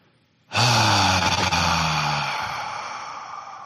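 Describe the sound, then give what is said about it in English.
A single long, deep exhale bursts out after near silence, following a breath hold. It is breathy, with a low rumbling undertone that fades gradually over a few seconds. “And then when you exhale in a couple seconds, feel into what they're feeling.”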